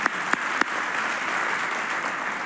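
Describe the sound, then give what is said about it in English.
A church audience claps in agreement after a prayer, a dense, steady wash of applause, with a few sharper individual claps popping out near the start before the noise settles into an even, sustained patter. “In the name of Jesus, can we say amen and clap our hands in agreement now?”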